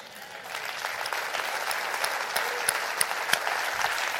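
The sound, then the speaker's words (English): An audience claps their hands in sustained, dense applause, a steady wash of many overlapping claps with a few sharper, louder slaps standing out, no voices clearly audible. “Come on, clap your hands.”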